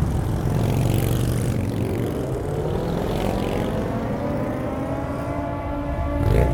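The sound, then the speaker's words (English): A steady, loud drone of motorcycle engines rumbles, their pitch slowly sliding as they pass, with a brief surge near the end. No one speaks. “They hear the sounds of motorcycles, possibly a rival gang driving nearby.”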